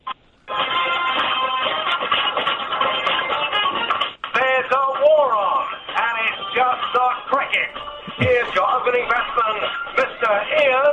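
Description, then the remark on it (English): The 11 o'clock show's radio theme tune plays steadily for about ten seconds, thin and band-limited as if heard over a phone line, with sung or sliding melodic lines and a brief break midway. “It's the 11 o'clock show theme.”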